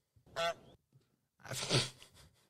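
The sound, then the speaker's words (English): Two loud, nasal honks from a live goose brought indoors as a company mascot, a short bright one followed by a longer, harsher blast that trails off, with no talking. “Did you bring a goose in here?”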